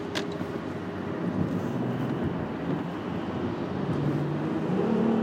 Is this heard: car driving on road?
yes